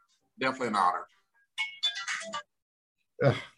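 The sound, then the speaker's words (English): A phone ringtone plays in three short bursts of bright, melodic tones separated by brief pauses. It's fairly loud, with no one talking over it. “I got to shut off my phone, too.”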